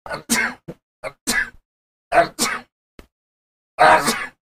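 A run of about four sharp, explosive sneezes, each a short breathy double burst, spaced roughly a second apart with quiet gaps between and no talking.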